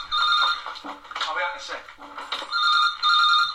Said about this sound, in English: Phone's ringing.